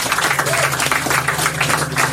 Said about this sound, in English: One more round of applause for this guy, please.